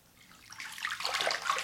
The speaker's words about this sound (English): Splishity splash. I'm going to finish enjoying my bath all alone. Splish, splash, splash.